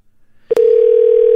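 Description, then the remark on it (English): A click, then a steady, loud telephone tone starts and holds unbroken through the end, like the line ringing on an outgoing call. No one speaks. “Let me give you a buzz right now. See what we can do.”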